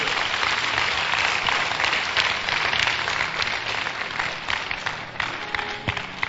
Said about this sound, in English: Clap for Jesus.